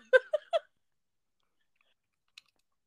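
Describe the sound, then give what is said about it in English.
Three quick, sharp crunches in close succession as crunchy rolled tortilla chips, Takis, are bitten and chewed, then silence with one faint click near the end. “I liked how crunchy it was.”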